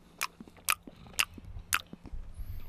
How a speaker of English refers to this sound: If you're going to chew like that, can you back away from the microphone a little bit?